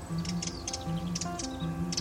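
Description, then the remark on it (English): A bird calls in short, sharp ticking chirps, several quick bursts spaced irregularly over two seconds, clear above a steady low background hum. “This bird is on a weekend break from the city.”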